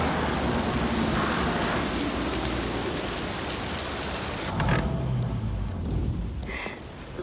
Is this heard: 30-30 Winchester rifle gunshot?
no